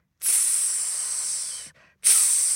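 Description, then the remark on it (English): A voice imitates a cobra's hiss: a long, loud, sharp breathy hiss, a brief pause, then a second hiss begins. No other talking. “Everyone hissed and dripped poison from their fangs.”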